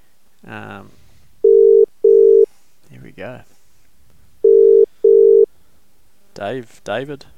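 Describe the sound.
An outgoing phone call rings twice, each ring a steady double-pulse tone, loud and clear through the line, with brief speech before, between and after the rings.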